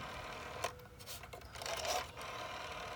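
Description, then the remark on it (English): The dial of an old rotary telephone turns and whirs back with a series of light ratcheting clicks, coming in a few short mechanical bursts over a steady, faint background, with no voices. “Like, that's like spinning this thing about 30 times, you know, just to call her.”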